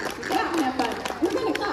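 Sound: audience clapping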